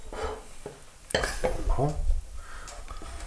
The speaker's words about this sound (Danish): Det der skete nu var, at jeg væltede faktisk min vinglas ud over... Det er jo ikke så meget, det er jo mere det der med, om det går ned i... Nej, det gør det ikke. Det kan da godt gå ned igennem knapperne.